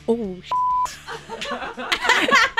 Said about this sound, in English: Well, whatever. We have beeps for a reason.